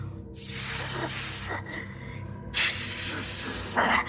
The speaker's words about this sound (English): It was making a noise, a kind of weird hissing noise. It was breathing and hissing, and I could feel its cold breath on my neck.